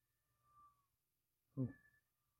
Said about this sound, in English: Oh, you're talking like that? The cat screaming at me.